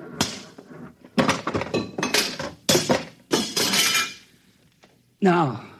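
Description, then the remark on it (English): A big, simple machine that controls the buzzer is smashed with a series of loud, irregular crashing blows, metal clanking and bits clinking and breaking after each hit, before a voice cries out at the end. “I'm going to smash it.”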